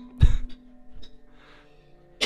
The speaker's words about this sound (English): Yeah, he's coughing up spaghetti right now. You could hear it on my mic.